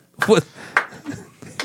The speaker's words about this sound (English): Slow clapping it. Nice.